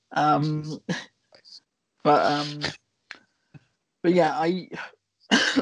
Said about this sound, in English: thank you for coughing into the microphone. Now we're all sick. Sorry. You're welcome. This podcast is labeled a super spreader event.